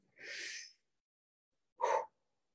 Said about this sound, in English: And keep breathing. And keep breathing. And keep doing this for 10 minutes. Just breathe.